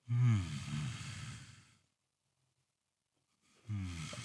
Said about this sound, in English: And then do the yawn and try to close your mouth. So you're just letting the back of your throat open up. So like you're trying to stifle the yawn.